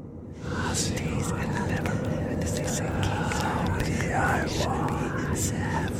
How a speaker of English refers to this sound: We can also add some sounds, like whispering.